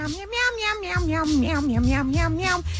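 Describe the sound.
A person doing karaoke sings in a drawn-out, meowing cat-like voice, the wavering pitch sliding up and down continuously, loud, with a few low thumps underneath.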